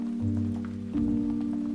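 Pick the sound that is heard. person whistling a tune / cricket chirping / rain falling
rain falling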